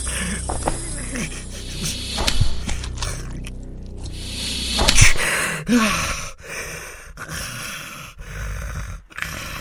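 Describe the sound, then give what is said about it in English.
A pastor covered in snakes gasps and wheezes for air in ragged, strained, uneven breaths, with a sharper choking burst midway before the breathing grows more broken and faint, then goes quiet. “I heard him gasping for air, and then he finally became quiet.”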